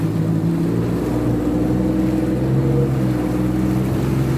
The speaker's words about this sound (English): I'm in a wave runner and I'm just like 30 feet from the shoreline right now.